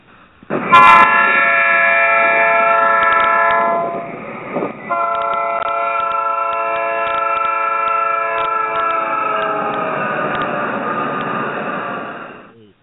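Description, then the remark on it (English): A loud train horn from the westbound number nine train blares in two long sustained blasts, the first about three seconds, then after a brief pause a much longer one, with rumbling rail noise beneath and no voices. “Some of them out there didn't believe we had we conducted a train out here on the Hushmo Black Forum.”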